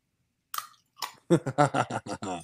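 Chewing of stale bubble gum from an old pack of trading cards, still a bit chewy and not crumbling: two sharp crunchy bites, then a quick, steady run of wet, rhythmic chomps.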